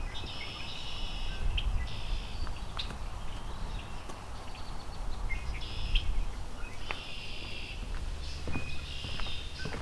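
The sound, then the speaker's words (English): A common yellowthroat sings repeated bright, rolling phrases, a short song roughly every second or two, over steady outdoor background noise and faint low thumps. “Common yellow throat.”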